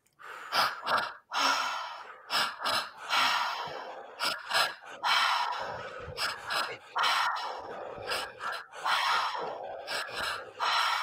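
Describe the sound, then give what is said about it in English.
Loud mouth breathing in a steady, fairly quick rhythm during a breathing exercise: repeated deep inhales into the belly and high chest and exhales out through the mouth, with an airy, rushing texture, about a dozen cycles and no talking. “In through the mouth through your belly, in through the mouth through your high chest, out through the mouth.”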